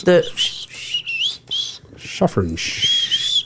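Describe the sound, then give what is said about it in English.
Someone makes airy, hissing tooth whistles, several breathy bursts with thin high tones sliding in and out, fairly loud, with brief bits of voice in between. “You know you've got a tooth whistle.”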